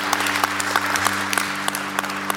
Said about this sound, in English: All right, look at that. You're clapping, so that means I said enough.